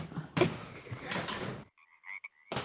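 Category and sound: animal, frogs croaking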